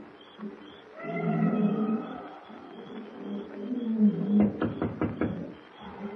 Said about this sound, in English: Darkness has fallen. The matted jungle is alive with the hum of insects and the weird baying of nocturnal beasts as Kent approaches Pango Pete's broken-down shack near the native quarter.